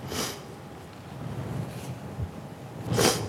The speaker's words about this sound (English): Excuse my sniffing.